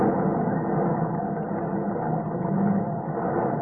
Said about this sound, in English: That's the ship's pipes breaking up. That's her plates buckling. Oh, you can almost see them twisting off.